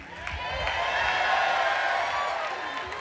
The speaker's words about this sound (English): And the church shouted.